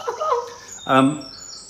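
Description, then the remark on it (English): A mother bird calls near its nest: a brief chirpy phrase, then one louder, fuller call, with faint high twittering lingering in the background. “I mean, I suppose my that beautiful sound is the bird.”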